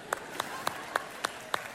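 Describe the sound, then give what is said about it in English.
Six steady, evenly spaced hand claps ring out at a brisk rhythm over a faint background hum, sounding more like a small group or single clapper than a full roaring crowd, as an audience applauds a person who answered "God". “Okay, let's applaud the person that just said God.”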